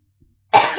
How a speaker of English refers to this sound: Cough. Nice. This is like the 18th week in a row that you've had a cough. Yeah, I mean, it's probably not normal. But it's fine.